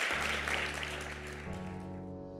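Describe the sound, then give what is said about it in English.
A church audience claps together after a prayer, a steady, dense wash of applause, with sustained musical chords playing underneath that shift partway through and continue as the clapping thins slightly. “Come on, can we clap our hands?”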